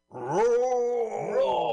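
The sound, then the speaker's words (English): A lion's roar: one loud, drawn-out growl that swells, holds a deep throaty tone and slides lower before rising again, lasting under two seconds with no talking. “Immediately we're roared at by a lion.”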